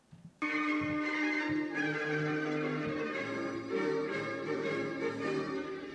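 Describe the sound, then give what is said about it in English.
A loud peal of bells rings out suddenly and keeps going, layered tones overlapping in a dense, shimmering wash with a low rhythmic pulse underneath, no voices present. “This makes me feel better. There you go. And we do have some letters. I think it's the bells.”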